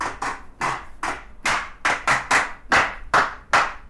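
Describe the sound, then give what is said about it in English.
Sharp hand claps repeat in a steady, slightly syncopated rhythm, about a dozen crisp bright claps over four seconds with no voices. “It could be via claps.”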